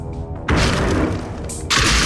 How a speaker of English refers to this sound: The sound of wood splintering, a door being kicked in, lights in our faces, and incoherent screaming.